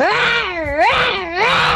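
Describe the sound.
A 9-year-old girl from Ovens imitates a lion's roar: a loud, sustained vocal growl that swoops down and up in pitch twice over about two seconds, with no talking.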